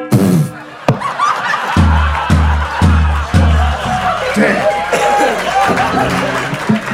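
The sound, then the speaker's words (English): An audience claps steadily for several seconds, a dense, loud wash of hand claps mixed with crowd murmur and scattered laughter, with some low thumping underneath. “Don't clap at that. Fucking clap at that.”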